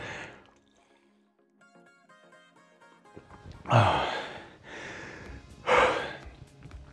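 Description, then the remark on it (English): Heavy, effortful breaths of a person during a rowing workout, two loud gasping exhales about two seconds apart, over a faint background of soft tonal music. “It's one of the reasons I'm not talking, so I can breathe.”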